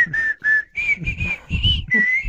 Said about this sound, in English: you have to whistle now, too.